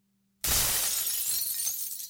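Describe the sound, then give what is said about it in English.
Glass is dropped and crashes down, shattering all at once, a loud burst of breaking shards that keeps tinkling and scattering for over a second with no voices. “You dropped all that glass.”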